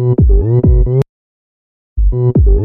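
A loud pop song snippet built around bright, sliding vocal whoops that swoop down in pitch, cut off abruptly by about a second of silence before the same whooping phrase starts again.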